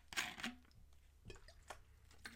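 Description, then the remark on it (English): Quiet wet sounds of someone drinking Essentia water: a few short slurping sips and swallows with brief pauses between them, and no talking. “So, take a drink of water real quick.”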